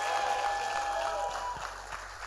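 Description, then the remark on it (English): A church audience claps and shouts in a dense, steady roar of applause lasting a couple of seconds, with sustained musical tones ringing underneath and fading slightly at the end. “Somebody clap your hands and shout if you believe that.”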